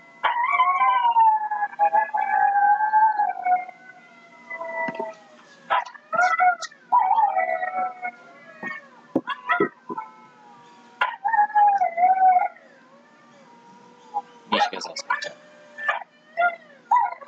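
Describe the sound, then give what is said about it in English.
Several dingoes howl in long wavering, overlapping wails, broken by sharp yelps and high squeals, loud, with no talking. “dingoes make weird bird sounds”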